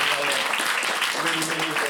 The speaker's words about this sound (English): So, yeah. Thank you very much. Like, really big clap.